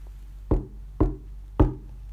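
Three heavy knocks on a door in Shakespeare's Macbeth, as Macbeth arrives before the witches, evenly spaced about half a second apart, each a solid low thud with a short ring. No voices, just the knocks over a quiet background.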